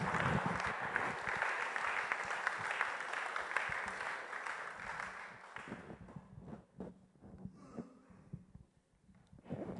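An audience applauds the Almighty God after a prayer, with dense, steady clapping that fills the first six seconds, then thins out into scattered claps and a few voices before fading.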